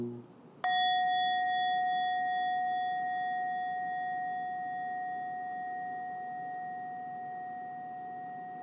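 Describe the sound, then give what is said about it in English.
A single strike on a large bell, followed by a long, clear ring whose bright overtones hum steadily and fade very slowly over several seconds, with no voices present. “May the sound of the bell reach deeply into the cosmos.”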